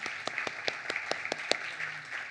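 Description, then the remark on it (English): An audience in a chapel applauds people who accepted Christ, a steady wash of many hands clapping at once with sharper individual claps popping out irregularly throughout, moderately loud and with no voices. “Let's give it up for those people that accepted Christ in chapel.”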